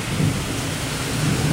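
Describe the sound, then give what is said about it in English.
Heavy rain pours down in a steady, dense hiss while a low rumble of thunder rolls underneath, loud throughout the brief stretch with no voices. “As I plant my feet on this earth, as I feel the rain come down and cleanse me and rebirth me and give me all the energy that I need to be something wondrous, something brave.”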